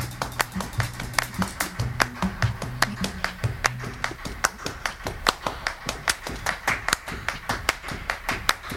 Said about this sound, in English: And this is happening here just naturally because there are five people clapping and their hands are making very similar pitches. So sometimes the waveforms are canceling one another out.